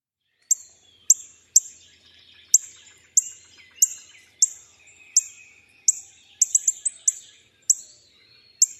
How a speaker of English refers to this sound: So that was the Northern Cardinal song. Here's its call, high pitch chip note.